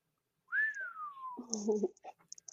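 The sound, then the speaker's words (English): A person whistles one clear, fairly loud note that rises briefly, then glides steadily downward for nearly a second, followed by a short burst of voice and a few light clicks. “That was a good whistle.”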